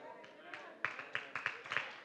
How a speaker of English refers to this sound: Three claps.